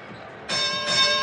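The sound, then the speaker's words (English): A bright bell chime, the 30-point bell in a basketball game broadcast, rings out abruptly after a brief stretch of low background noise, sustaining with clear, high overtones and swelling slightly louder near the end. “Got a 30-point bell brought to you by Larry H.”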